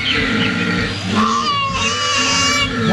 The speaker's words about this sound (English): Is that lady koala right there? Is that man koala right there? Oh my! No, yeah. I don't know. The lady koala almost sounds like a bird chirping, right? And then the deeper grunt is the man.